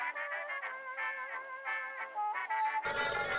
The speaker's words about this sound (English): Sir, the desk bell is not for creating jingles.